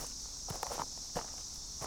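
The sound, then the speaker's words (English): A handful of soft, scuffing footsteps in brogans on dusty ground, walking toward water, spaced unevenly, with a steady high-pitched hiss like insects droning underneath throughout. No one speaks. “He grabs his canteen from his rucksack, then makes for the water.”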